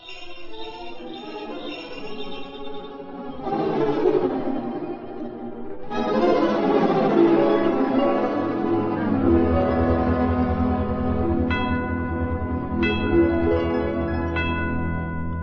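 Bells chime over a swelling bed of sustained, shimmering tones, with several bright, distinct strikes ringing out near the end. Fairly loud, with no talking.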